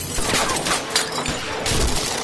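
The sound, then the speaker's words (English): A rapid volley of gunfire from a gang shooting at a darkened house, with sharp overlapping cracks bursting one after another in a loud, dense barrage that stays intense throughout, with no voices. “They're shooting high.”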